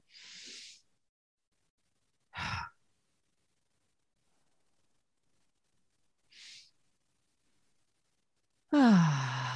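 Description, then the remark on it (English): Slow, exaggerated deep calming breaths: a long breathy inhale, a short exhale, a fainter breath after a pause, then a loud, drawn-out voiced sigh, as a person focuses on breathing to model emotional regulation. No talking. “But what I would do is I would focus on my breathing.”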